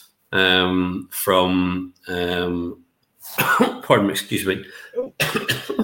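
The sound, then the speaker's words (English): Three strained, throaty coughs in quick succession, loud, each a short rough burst, after something caught the speaker's throat, followed by a person talking. “I'm coughing.”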